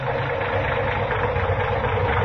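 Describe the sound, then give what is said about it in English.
A rough car engine with a sticking valve idles steadily, a constant low rumble with a dense mechanical rattle over it, unbroken for the whole stretch with no voices. “Say, that engine of yours sounds like real tired iron.”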